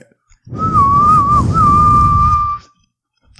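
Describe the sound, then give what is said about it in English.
A person whistles one long, steady note, in character as Mario trying to whistle for Yoshi. The note wavers slightly and dips briefly near the middle, over a rough, rumbling background noise, with a short spoken remark before it. “Mario, why don't you try to whistle for Yoshi again?”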